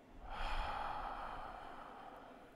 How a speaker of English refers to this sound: breathing that involves our diaphragm, very deep belly breathing. Those inhalations and those exhalations are life force.